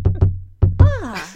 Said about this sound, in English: Hold on. Something comes a tapping at our chamber door to interrupt this little